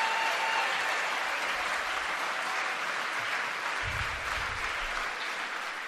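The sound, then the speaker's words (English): A large crowd at a Donald Trump rally applauds and cheers his call for a total and complete shutdown of Muslims entering the United States, a steady, dense roar of clapping that holds at the same loud level throughout, with a few whistles and shouts rising out of the noise. “Listen to that loving crowd, that empathetic crowd.”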